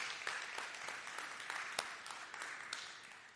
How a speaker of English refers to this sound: And I just want to say on behalf of everyone here to our care group leaders, thank you for the way that you serve all of us. You're a blessing. Yes, you can clap.